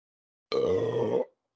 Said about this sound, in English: That was delicious. Beautiful. That tasted so good. Mac and cheese burp.